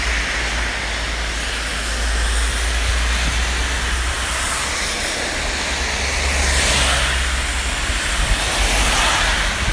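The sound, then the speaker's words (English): Heavy rain hisses steadily during a very wet morning rush hour, about 8:30 a.m., while cars whoosh past on the wet road, their tyre spray swelling and fading in a couple of broad surges over a low traffic rumble. No voices. “So I don't know how well you can hear me, but every few seconds I'm getting the whoosh of the cars going past me.”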